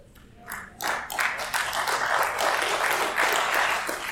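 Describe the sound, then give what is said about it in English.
A crowd breaks into applause, starting with a few scattered claps before swelling into steady, dense clapping that holds at a fairly even loudness. “Give us a big round of applause on those of you that really like the taxes are paying.”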